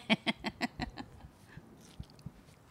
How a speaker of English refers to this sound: Oh, she's got a big piece of watermelon in her mouth. Hi. That's her. That's what she sounds like with watermelon in her mouth.